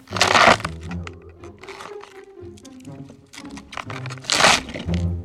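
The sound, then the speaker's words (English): Wet, fibrous crunching and snapping as a celery stalk is twisted and broken to mimic the bones of a hand being crushed by a mallet, with two louder bursts of cracking at the start and near the end and softer crackles between. “To reveal what I'm using is just a stalk of celery.”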